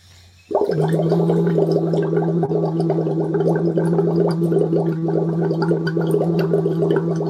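Bubbles blown through a straw into dyed water while making a voiced sound, starting abruptly and continuing steadily for several seconds, with a sustained hummed voice tone running under the dense, gurgling bubbling.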